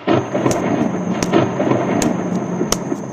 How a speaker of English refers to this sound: Thunder rolled down from the hills.